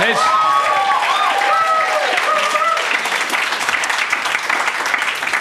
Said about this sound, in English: But before we get started, a round of applause to your host,